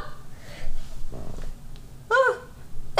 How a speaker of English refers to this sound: Hold on, I have to sneeze.